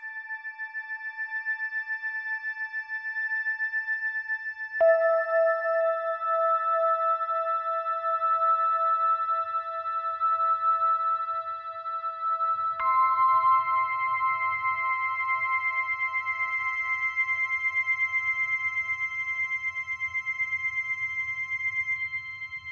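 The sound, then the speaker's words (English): Sustained piano tones ring steadily with bright, resonant overtones shimmering high above. The pitch shifts twice, each new note holding evenly with no voices present. “I don't know how else to say it other than resonance that kind of moves upward in the very, very extreme highs.”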